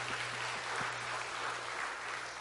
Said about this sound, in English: Can we give them a round of applause to encourage them?